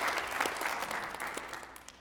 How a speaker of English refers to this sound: Amen. Yeah, you can clap. Praise the Lord for that.